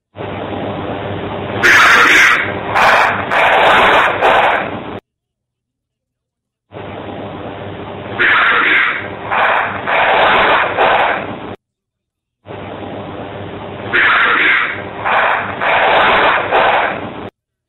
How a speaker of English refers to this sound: And then you hear what sounds like either firecrackers or gunshots. Gunshots. It doesn't really sound like gunshots. It could be gunshots. Okay. I mean, it's gunshots.